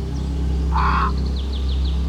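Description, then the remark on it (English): A bedraggled crow perched in the branches of an old beech tree lets out a single harsh, raspy caw, followed by a few quick, faint high chirps against a low, steady background hum. “In the branches of the old beech tree, unnoticed by the denizens of Mousewood and their guests, sat a bedraggled crow.”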